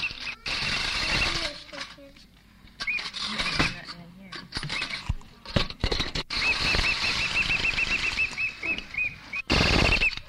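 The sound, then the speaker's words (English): A child winds up a wind-up toy plane and sets it whirring: rapid ratcheting clicks and a buzzing flutter that stop and start, with high squeaky chirps and faint voices in the background. “He's saying that with a sucker stuck in his mouth, with a stick protruding out to the left, and he's winding it up down in here.”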